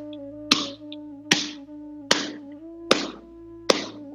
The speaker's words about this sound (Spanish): Entonces, en mi mente estoy contando y no lo voy a decir, solamente voy a hacer el ritmo para que lo escuchen. Entonces toco con las palmas.